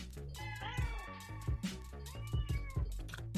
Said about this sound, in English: I think this is the very first time a cat has appeared on the podcast. First time animal ever. Yeah. Yeah, first time we ever had an animal.